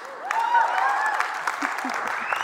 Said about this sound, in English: Maybe you can clap if you want. I don't know.